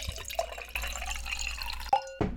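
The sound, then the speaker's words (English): Wine from the 2018 vintage pours steadily into a glass for tasting, a bright liquid gurgle lasting about two seconds before ending with a few small splashes and a brief clink. No one speaks. “So let's pour this wine and see how it tastes.”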